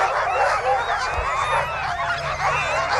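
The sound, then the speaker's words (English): Sled dogs bark and yelp excitedly all at once at the mass start of a race, as 14 teams depart from Charles Family Lake heading north, a dense, continuous chorus of overlapping high-pitched yips at steady, fairly loud volume. “The barking decrescendos as the last team departs towards the horizon.”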